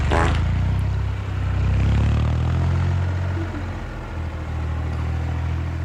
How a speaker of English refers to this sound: He's revving up.